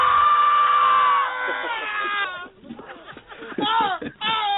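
A man, Tom Hanks in the film A League of Their Own, lets out a long, loud, strained scream on a bus that wavers and breaks into ragged, sobbing cries, with a faint crowd murmur behind him, all somewhat bandlimited as if played from a film.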